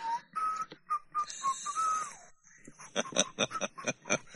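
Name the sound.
person whistling a tune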